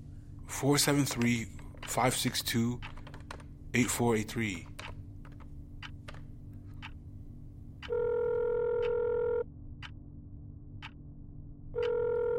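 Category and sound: signal or alarm, telephone dialing and ringing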